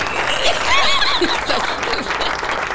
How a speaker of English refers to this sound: Can we get a clap on that one? Let me hear it.